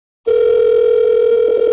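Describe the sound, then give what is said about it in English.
After a brief moment of silence, a phone's outgoing ringing tone starts: one steady, loud electronic hum that holds unbroken to the end, with no voices. “He just never answers the phone.”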